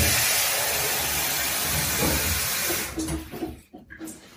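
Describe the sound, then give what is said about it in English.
The final lot of water pours steadily into an Instant Pot, bringing it to almost the 3-litre mark, with a broad, rushing hiss for about three seconds, then thins into uneven splashes and trickles before stopping. “And then that's the final lot of water going into the Instant Pot.”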